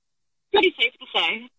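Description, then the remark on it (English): A brief burst of muffled, garbled voice over a phone line, the words unintelligible, lasting about a second against an otherwise silent background. “What's going on with your phone? Why am I having difficulty with you?”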